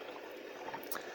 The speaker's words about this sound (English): Then pour the Blix in, more of that, so about 5 ounces or 150 millilitres, same temperature. That goes in for another 45 seconds, and then that's poured back in the jug for reuse next time, so as not to be so wasteful.